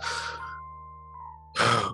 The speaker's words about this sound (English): Sorry for breathing in the mic, y'all. My apologies.